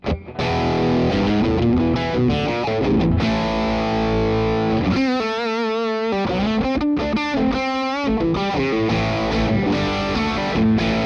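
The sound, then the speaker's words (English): A loud electric guitar through a Boss DS-1 distortion pedal feeding into a wah pedal plays sustained chords and ringing single notes through crunchy distortion, with a brief stretch of sweeping, vocal-like tone in the middle and no one talking. “I got the Boss DS1 going into the wah. Here's my DS1 sound.”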